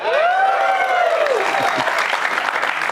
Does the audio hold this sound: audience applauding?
yes